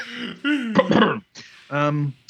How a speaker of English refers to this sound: This might be a good one for your Republican family members or friends. I say that with a cough.